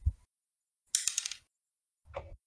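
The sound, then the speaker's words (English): Dice clatter and tumble across a hard tabletop in a short, bright rattle during attack rolls in a tabletop role-playing game, followed by a softer second roll; a dull thump comes just before. Fairly quiet, with no talking. “Oh, that's the wrong dice.”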